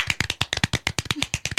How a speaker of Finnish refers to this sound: Aplodien paikka.